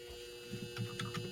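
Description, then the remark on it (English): A clothes dryer's steady electric buzz drones on at low volume, with a few faint muffled knocks and rumbles underneath toward the end. “That's my dryer.”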